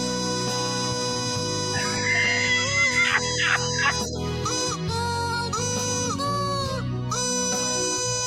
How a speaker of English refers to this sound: Here they come. Here come the ducks.